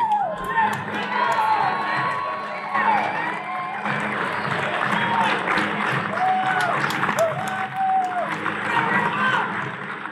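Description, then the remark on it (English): A large crowd coming into a stadium murmurs and buzzes steadily about five minutes before a football kickoff, on a beautiful day, with scattered claps, cheers and occasional whistles and shouts rising out of the dense, continuous chatter. “There's a crowd coming into the stadium now. There's a little bit of atmosphere here.”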